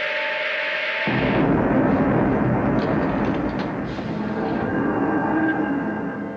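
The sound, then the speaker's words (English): A malfunctioning sci-fi time machine effect: a brief steady electronic hum gives way to a loud, sustained roaring rumble with grinding, crackling noise and faint whining tones, with nothing else heard. “We start off with some kind of bad sounding TARDIS noises.”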